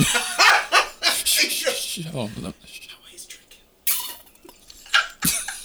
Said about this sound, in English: Hold on. Let me stop you. Let me drink this water that I brought.